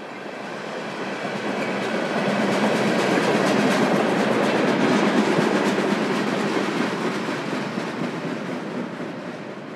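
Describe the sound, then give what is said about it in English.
A freight train of oil tanker cars rolls past, its steady rumble and rhythmic wheel clatter swelling to a peak and then slowly easing off, with no voices. “There's an oil tanker.”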